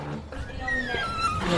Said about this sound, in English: It's a very noisy door